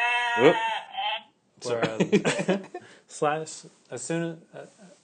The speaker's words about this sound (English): Where'd that sheep go?